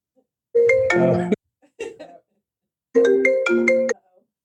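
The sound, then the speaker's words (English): A melodic incoming-call ringtone for a phone call from one of the speaker's children plays two bright, stepped musical phrases about a second each, separated by a short pause with a faint brief murmur, loud. “How they called me. I'd like to know. That maybe WhatsApp on my computer.”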